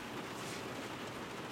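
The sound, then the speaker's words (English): Steady rain patters on the roof of a parked Sprinter van used as a mobile studio, a dense, even hiss of drops with no breaks and no voices, fairly soft throughout. “West Coast Project is mobile, and I'm in a rainstorm.”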